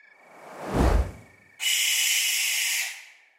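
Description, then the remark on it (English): A rushing whoosh swells and fades, then a harsh, raspy owl screech cuts in, a loud hiss-like shriek held steadily for just over a second before stopping abruptly. “But if you have ever been out at night by yourself walking around near a barn, and you've had one of those birds swoop by you and screech,”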